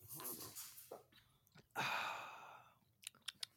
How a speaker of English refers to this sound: So I am drinking my beer right now.